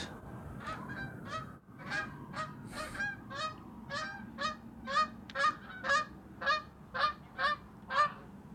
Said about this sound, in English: Yes, those are geese.